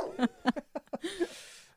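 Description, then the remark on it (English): Walt, a dog, barks in a quick run of short, sharp yips, about six in under two seconds, fairly loud, with no one talking over it. “He's saying Max Goof is not a dog, is what he's saying.”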